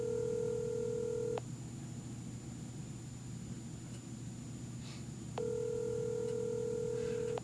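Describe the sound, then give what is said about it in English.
Two rings of an outgoing phone call's ringback tone, a steady electronic purr lasting about a second and a half each, separated by a long pause over faint line hiss. “It's a lot of rings. I don't think we're getting an answer.”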